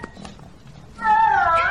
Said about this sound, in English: I'm trying to breed all these cats in my room, but I think I'm going to need more towels because there's no litter box in here.